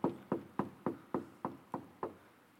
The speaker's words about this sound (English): And guys, he's knocking.